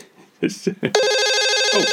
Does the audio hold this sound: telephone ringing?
yes